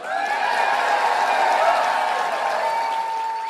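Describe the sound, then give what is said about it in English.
A large audience applauds steadily, a dense wash of many hands clapping at once, holding an even, loud level for a few seconds with some faint cheering mixed in, in response to a speech line about becoming first lady. “And I'm sure they're applauding the be your next first lady bit, meaning Trump would become president, which he did, versus the thing about being nice to each other on social media.”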